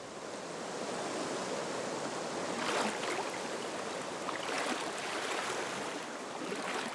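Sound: flowing river water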